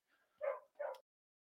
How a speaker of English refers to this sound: man, my dog going crazy.